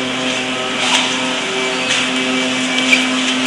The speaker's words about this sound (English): It's electrically operated on this aircraft. Come around take you into the forward bomb bay, which is opened on the ground simply by opening this latch. See the large mirror doors, or bomb bay doors.